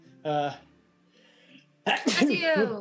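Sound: sneeze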